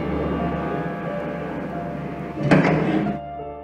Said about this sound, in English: When she reached her home, she got into the elevator, the lift, and the doors closed behind her.